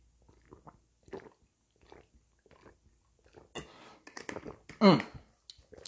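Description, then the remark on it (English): Someone takes a gulp of a drink: a few soft wet mouth clicks and swallowing gulps, followed by a louder burst of sipping noise and a satisfied vocal exhale. “So let me get this gulp off and then get into my Riley Randoms.”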